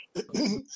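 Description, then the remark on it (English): A single loud cough with a throaty, rasping burst that trails off, heard on its own without any talking. “Was that cough for you?”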